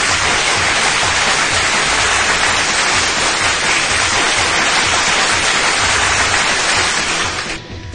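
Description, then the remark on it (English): A dense, steady wash of applause played as a sound effect from a sound effects board, many hands clapping at once for about eight seconds before it thins slightly at the end. No voices are heard. “Applause. Massive applause.”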